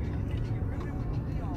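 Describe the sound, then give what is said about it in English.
Steady low rumble of a car interior while driving in traffic, constant engine and tire drone filling the background while a muffled voice talks over it. “This is me pouring my passion or whatever the fuck I'm feeling in traffic”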